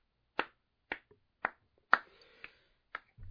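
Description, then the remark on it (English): A slow, sparse golf clap: about six light, crisp hand claps spaced evenly roughly half a second apart, each short and sharp, with no voices. “That's a golf clap that you were giving.”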